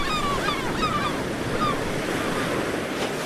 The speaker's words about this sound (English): We've got a nice strong wind.